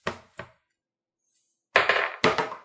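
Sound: dice being rolled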